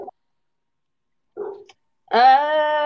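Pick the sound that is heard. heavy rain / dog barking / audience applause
dog barking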